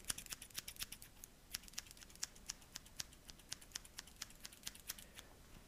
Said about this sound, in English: scissors, but they're right here in my hand, so just go ahead and finish cutting you up here.